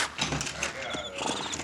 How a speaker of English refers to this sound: Hey, the stagecoach coming. Get ready, boys. Ah, come on, come on. All right, driver, stop those horses. A couple of you boys, watch the driver. Make sure those horses don't bolt.